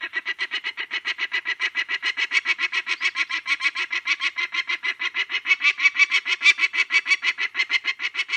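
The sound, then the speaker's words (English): A female bird on her nest in a field squawks loudly and persistently at a person who has hopped the gate, a rapid, unbroken series of harsh, raspy calls repeating several times per second, with no talking. “You walk into the field, and if she's on the nest, like I come in from that gate over there, and the minute you hop the gate, she'll start squawking at you.”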